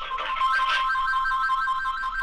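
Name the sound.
phone ringing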